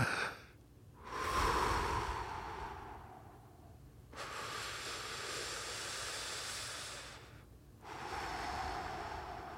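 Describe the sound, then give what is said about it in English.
Three long, deep breaths, slow, each a broad airy rush of several seconds separated by brief pauses, with no talking. “Just gotta breathe, man. You gotta breathe. You gotta take a moment. Take 20 big breaths, dude.”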